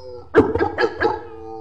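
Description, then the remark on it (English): A dog howls in four short, wavering pulses over about a second, loud, with a faint steady hum underneath and no talking. “Somebody get that motherfucking dog.”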